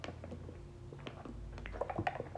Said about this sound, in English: If you hear this bag rustling, I'm just about to take a sip of my water, and Anchor doesn't let you pause the podcast, so.